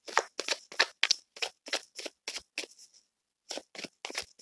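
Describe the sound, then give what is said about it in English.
Tarot cards being shuffled, a quick run of about a dozen crisp, papery slaps in a steady rhythm, a brief pause, then a few more. No one speaks. “Let me shuffle a little bit more.”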